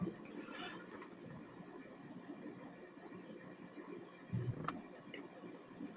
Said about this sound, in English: And now there are just random car noises.